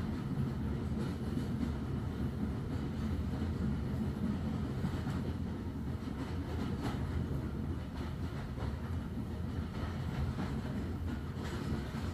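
A train edges along railway tracks, getting nearer as it sweeps in gentle curves: a dense low-pitched roar with faint rhythmic clatter, sustained for the whole stretch, with no voices.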